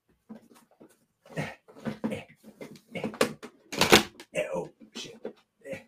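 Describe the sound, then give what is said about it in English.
A desk drawer is unlocked and pulled open to look for physical PS5 games: a few sharp metallic clicks and a rattling slide, among scattered shuffling sounds and some background voice activity. “Do you want me to open up this drawer right next to me?”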